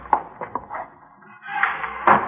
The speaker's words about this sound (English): Wait a minute. I'll get the door.